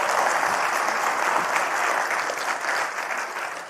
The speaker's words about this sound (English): Thank you. Could you guys give these guys a round of applause?